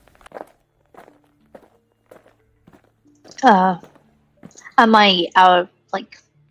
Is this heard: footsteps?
yes